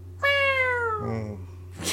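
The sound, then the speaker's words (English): A person imitates a cat with one long, drawn-out meow that slowly falls in pitch, fairly loud, followed by a short breathy burst of noise. “It's not like I'm dying to make the meow.”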